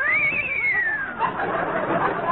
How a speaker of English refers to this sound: The frightened whinny of our horses.